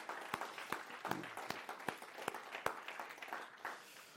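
A church audience applauding guests in appreciation during a service, with sharp, crisp hand claps ringing out over a steady patter of many clapping hands for about four seconds before tapering off.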